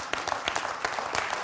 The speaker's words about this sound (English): Oh, that's all right. You can clap right there.